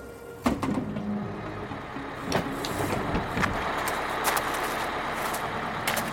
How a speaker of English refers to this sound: Okay, everyone, take a minute to stretch your feet. We're getting off the bus.